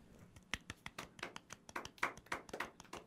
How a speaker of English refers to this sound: The golf clap. I love it.